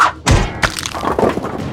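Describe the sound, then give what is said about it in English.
Two heavy cracking impacts in quick succession as purple runes on skulls are smashed, followed by a brittle, glassy crumbling and crackle that lingers briefly. No voices. “break the purple rune on their skulls.”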